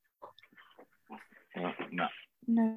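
A small puggle dog snorts and grunts in a series of short, snuffly, pig-like bursts, ending with a louder, drawn-out whiny grunt.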